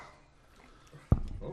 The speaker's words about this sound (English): Oh, we got a dog down here.